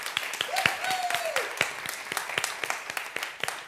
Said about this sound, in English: Let's give a clap to God. And now let's give a clap to the band.